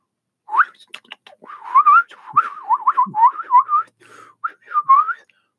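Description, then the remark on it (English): A person whistles a warbling imitation of a bird call, a run of quick wavering high notes rising and falling with short gaps, fairly loud and with no talking. “Most people make bird noises like this.”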